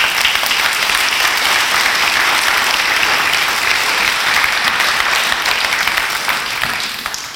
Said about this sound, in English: Let's clap to Jesus.